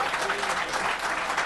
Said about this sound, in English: Round of applause, please, for Ken's incredible music. Thank you.